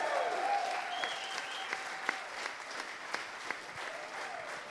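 A crowd claps steadily for several seconds, a dense wash of applause at an even level with a few sharper individual claps and faint whistles mixed in.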